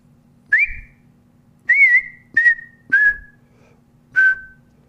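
A person whistles a short tune of five clear, sustained notes, each starting with a sharp attack and gently falling in pitch, spaced unevenly with brief pauses, fairly loud with no talking.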